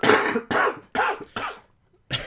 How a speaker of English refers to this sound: That was Nicolas Cage, just came in just to cough. He does it all the time.